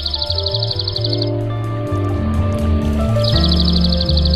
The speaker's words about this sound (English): The dark-eyed junco. Junco hyemalis. Today's Talkin' Birds featured feathered friend.